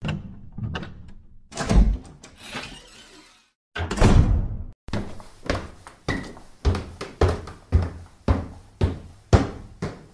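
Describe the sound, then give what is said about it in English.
A door opens with heavy thunks and a loud rushing whoosh, followed after a brief silence by a steady run of repeated knocking thuds, fairly loud, with no talking. “I opened the door into the multiverse.”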